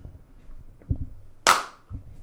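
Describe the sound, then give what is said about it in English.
A single sharp hand clap rings out, bright and snappy, with a quick decay and a few soft low thumps of handling sound around it. “Has anyone ever told you that your natural clap is kind of effeminate a little bit?”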